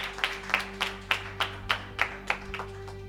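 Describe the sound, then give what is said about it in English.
A church audience claps hands in a steady, unified rhythm, about ten sharp beats roughly a third of a second apart, over a low constant hum and no talking. “Clap your hands and you may be seated.”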